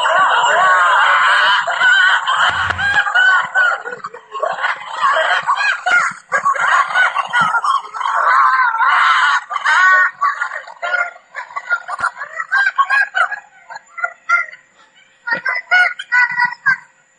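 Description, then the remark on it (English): A family of six red wolves, two parents and four pups, howls together in a loud, ragged chorus of overlapping wavering wails and squeals that runs unbroken throughout, with no talking; recorded in August. “But that is six wolves, two parents and four puppies trying to howl.”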